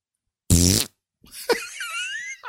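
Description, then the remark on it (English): A loud, buzzy fart blasts for about a third of a second, then a rising, squeaky whine with a brief snap follows, like air squeezed out under strain. “You lift me up when I fart so hard I fly.”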